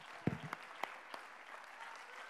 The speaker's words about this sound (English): Come on, let's praise Him right now. I hurry. Oh, come on, clap your hands. We got time for that.